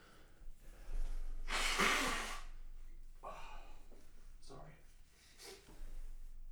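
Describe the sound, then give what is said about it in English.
A person blows their nose once, a loud, forceful, breathy burst lasting about a second, followed by a few softer snuffles and a brief spoken word. “Me blowing my nose.”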